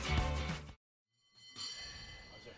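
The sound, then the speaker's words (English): The bell of Powell cable car number 21 clangs loudly with bright, ringing overtones, cuts off into a second of silence, then rings again more softly over a rumbling, noisy background. “Do they have distinctive sounds? They do. Certain bells sound better.”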